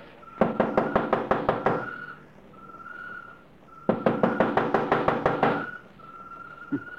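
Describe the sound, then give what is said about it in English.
Two bursts of rapid, sharp knocking on the door of a house, about eight quick raps each, loud, separated by a short pause, with a faint steady whistle-like tone in the background. “First time I ever heard of targets knocking on the door.”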